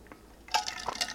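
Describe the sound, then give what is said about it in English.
Someone takes a quick drink of water during a break from talking: a couple of soft liquid sloshes and sips in quick succession, fairly quiet, with no talking. “Sorry, water break here.”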